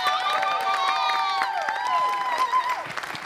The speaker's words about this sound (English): Round of applause